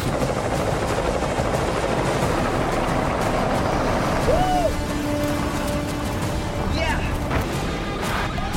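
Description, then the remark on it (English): A helicopter roars steadily for the whole stretch, its rotor chop thudding under a dense wash of engine noise, with a few faint whistling tones drifting through, as it flies people in to the place of a pickup truck test drive. “So they flew them in with a helicopter to the place where we're going to test drive the pickup.”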